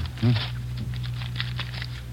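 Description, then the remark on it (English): Crinkling and rustling of the wrapper of a new deck of playing cards being torn open, a series of short, crisp bursts over a low steady hum, with a brief voice-like murmur near the start. “I haven't unwrapped him yet”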